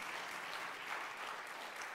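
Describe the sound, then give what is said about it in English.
A church audience claps steadily for a new preacher, a dense continuous wash of many hands applauding, sustained throughout with no talking rising above it. “So be sure to give him a round of applause and meet him today.”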